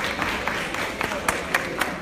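A crowd applauds the Virginia Assembly steadily, a dense wash of many hands clapping at once, with a few sharper individual claps standing out near the end. The applause is moderately loud.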